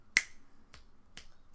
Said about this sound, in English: but snap your fingers without putting your ring and pinky finger down there to like create it. Like do like a significantly less of a noise.